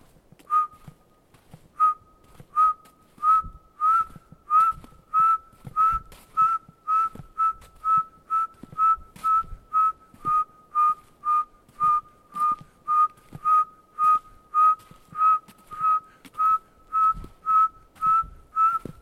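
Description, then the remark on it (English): A person whistles an imitation of an owl call, trying to call an owl: a long, steady series of short, mid-pitched hoots, nearly thirty in quick regular rhythm, fairly loud with no talking. “I'm going to try and call another owl. I keep calling for the owls here.”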